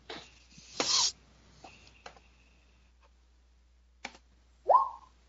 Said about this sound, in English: Jack Random, roll a d20